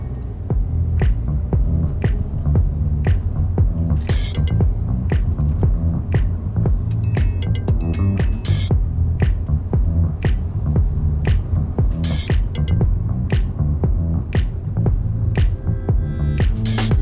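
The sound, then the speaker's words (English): A car's engine hums steadily from inside the cabin while driving about 3 kilometres to the suburb of Battle, a low constant drone with a regular ticking layered over it and no one speaking. “So after leaving Anker, I jumped in my car and I drove there.”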